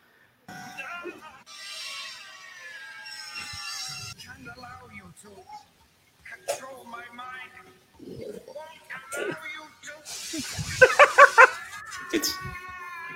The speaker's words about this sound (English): this is apparently a supercut of just Professor X screaming in the show. It'll take you back. It'll definitely take you back.